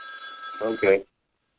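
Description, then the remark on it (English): A telephone rings with a steady, high electronic tone for about a second before cutting off abruptly, while a voice briefly overlaps the end of the ring. “Don't you got a house phone? Yeah. I got a house phone here, man. Business phone over there.”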